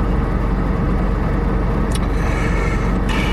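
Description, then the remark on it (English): A steady, loud Jaguar car engine drone fills the whole stretch, a constant low rumble with a couple of brief higher-pitched hisses cutting through near the end. No one speaks. “And the people in the car next to us just getting in, so that should help with the background noise.”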